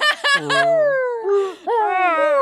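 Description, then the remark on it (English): A voice imitates zombie noises: a few quick choppy bursts, then long, drawn-out moaning wails that slide downward in pitch and swell again, eerie and whale-like, with no clear words. “You know, like whale noises, yeah, but zombie noises, yeah.”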